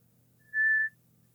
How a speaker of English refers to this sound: So can't you just like regular whistle with your lips?